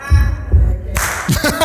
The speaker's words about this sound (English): Are we ready? Do we know what this is? Is this the simplest thing ever? Like, Baptists could almost do this hand clap.